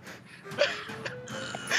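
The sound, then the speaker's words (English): A few short, breathy sniffs through the nose, airy and hissing, with slight pauses between them and no talking, over a faint background hum. “He sniffs it.”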